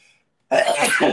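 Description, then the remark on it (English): A single sharp sneeze bursts out after a moment of near silence, loud and breathy, lasting about half a second before cutting off. “Bless you.”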